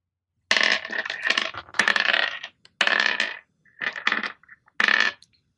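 Dice clatter and rattle across a hard tabletop in several quick bursts separated by short pauses, loud, with no one talking, as players roll for initiative in a role-playing game.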